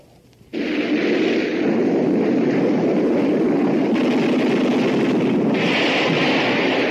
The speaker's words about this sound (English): That was an F-86 Sabre jet fighter in actual combat in Korea. I'm George Welch, chief test pilot of the Sabre jet at North American Aviation in Los Angeles. The Sabre is 37 feet long, weight 8 tons.